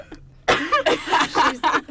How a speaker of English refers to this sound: That's what I thought at first. And then I'm like, oh, no, it's just a cough. I was trying so hard. Isn't it the worst when you're trying to hold it in?